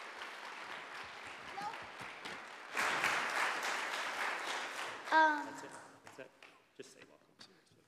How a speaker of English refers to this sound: Speaking of community, we love having newcomers each week. Are there any newcomers here today that would feel comfortable raising your hand so that we can greet you with applause? Yeah!